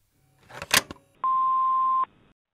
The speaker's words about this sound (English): So, from the story, I dialed the wrong number and it was just like buzz, and I was so confused. And I called again.